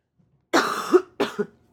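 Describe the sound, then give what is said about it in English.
Two harsh coughs, the first longer and raspier, the second shorter, fairly loud with no talking around them. “Hang on, I gotta cough.”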